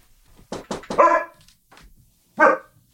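Archie, an Aussie Doodle dog, barks at the door greeting a visitor: a quick burst of three or four sharp, loud barks, a short pause, then one more bark on its own, with no voices present.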